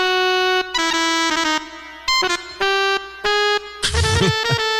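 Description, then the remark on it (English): A loud, reedy jazz saxophone sound effect plays alone: a handful of bright, buzzy held notes shifting in pitch with short breaks, ending in a rougher, squawking flourish. “Sounds like jazz sax to me.”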